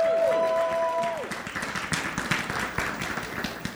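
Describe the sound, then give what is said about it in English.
An audience breaks into steady applause for a performer cast as Joseph in a nativity play, many hands clapping in a dense, crackling wash that holds fairly loud throughout, with a brief sustained tone fading out at the start. “And please give a round of applause for”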